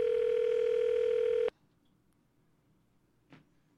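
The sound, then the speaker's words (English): A steady, buzzy telephone dial tone hums loudly for about a second and a half as a prank phone call to Bank of America is placed, then cuts off abruptly into near silence, broken only by one faint, brief click. “This is my first prank phone call. Let's see how it goes. We're calling Bank of America.”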